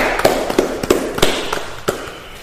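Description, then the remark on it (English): A short round of hand clapping: about half a dozen sharp, crisp claps at an uneven pace over a couple of seconds, with no voices. “Let's clap it up for that boy”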